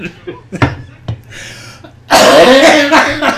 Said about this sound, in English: Get over here. Come within my coughing distance.